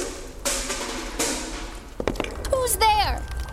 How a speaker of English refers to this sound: Shined my flashlight at a small boathouse. A paint can rolled out and fell into the water.